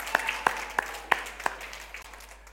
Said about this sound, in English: Oh, we can do better than that. Good morning, church. Yes, let's give a clap offering unto God.